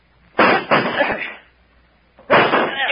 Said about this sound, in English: You're sure the door's locked? Yes, of course I am. Yep. Do something. We've got to save him if we can. Break down the door. That's it. Grab that chair.